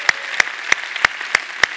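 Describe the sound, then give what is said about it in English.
Audience applause: sharp, evenly spaced claps, about six in under two seconds, ring out in a steady rhythm over a constant hiss, with no talking. “Everybody watching online, let's give them a big hand out there.”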